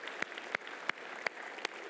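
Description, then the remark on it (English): An audience applauds the Lord during a morning church service, a steady wash of many hands with five sharp, evenly spaced claps standing out in a regular rhythm. The applause is moderately quiet, and no one speaks. “Let's give the Lord a round of applause for allowing him to deal with our heart this morning, shall we?”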